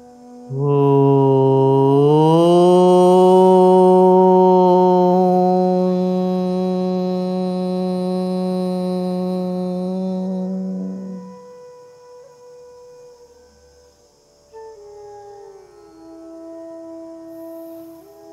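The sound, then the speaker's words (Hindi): A single voice chants a long, resonant Om (Omkar) in meditation, rising slightly in pitch, then holding a steady, drone-like hum for about ten seconds before fading into a quieter trailing hum. “ओंकार का ध्वनि हमें पवित्र बना देता है।”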